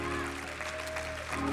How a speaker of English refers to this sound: If you've ever been in a desperate place like that before, I want you to clap your hands and thank God he brought you through it.